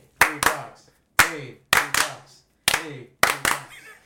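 Sharp, loud hand claps in short uneven bursts, mostly in pairs, about eight claps over four seconds with brief silences between them and a faint voice underneath.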